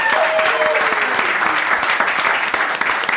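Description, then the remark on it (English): Sustained audience applause, a dense, loud wash of many hands clapping steadily for about three seconds, with a few faint whoops or tonal calls mixed in early on. “So let's hear it for this the Ohio River Recreational Trail.”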